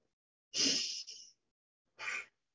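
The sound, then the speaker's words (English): Two loud, forceful breaths from a person doing an aggressive breathing exercise: a long, rushing breath followed after a pause by a shorter, sharp one, with no talking in between. “I find it more effective personally to do really loud breathing, and plus you guys can hear it more on audio.”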